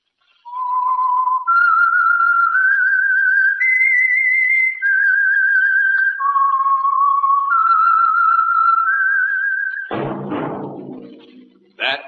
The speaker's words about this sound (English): Whistle is your signal for the Signal Oil Program, The Whistler.